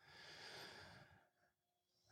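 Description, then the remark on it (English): One slow, deep exhale rushes out softly for about a second, breathy, as part of a breathing exercise, then quiet settles in before a sudden loud bump at the very end. “You guys have been on the show enough to know that we do a little breathing to get present.”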